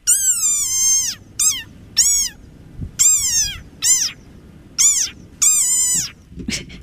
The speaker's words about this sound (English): I'm going to guess that's a type of frog, right? It's a desert rain frog.